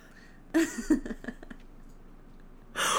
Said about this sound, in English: it actually has a film, a barrier of spit, and so it garbles the way that my mouth sounds, my voice sounds. And the only way to remedy that is to cough disgustingly into my microphone.